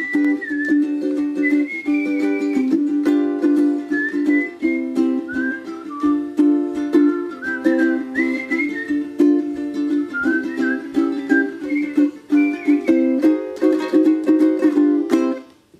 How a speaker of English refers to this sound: He didn't know I could whistle.